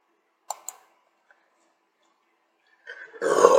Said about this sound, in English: Oh, excuse me for belching that loud.